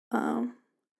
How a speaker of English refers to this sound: Anyways, I can make myself burp. You guys just got a little insight.